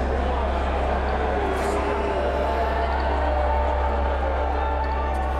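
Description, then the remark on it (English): A large crowd at a speech event in New Hampshire boos steadily for several seconds after organizers ask people to put on masks, a dense, sustained roar of low, drawn-out voices with no individual words standing out. “event organizers asked people in the crowd to put on a mask, and get this, people in the crowd started booing.”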